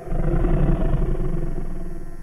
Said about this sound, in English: It sounds like a combination between lion and grizzly bear, as if both were very, very angry.